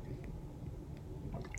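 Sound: sipping a drink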